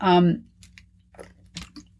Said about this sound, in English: I apologize, I need a sip of water.